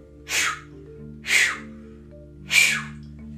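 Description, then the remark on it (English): Three breathy, airy puffs at roughly one-second intervals as someone learning to whistle tries to whistle, with only a faint thin tone emerging in the breath. No talking, and a low steady hum underneath. “But yeah, I'm learning how to whistle.”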